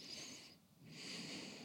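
Airy breathing during a breathing exercise, with fingers placed on the lower ribs: a drawn-out in-breath, a brief pause, then a long, slow, steady exhalation through the mouth, soft and hissy with no talking.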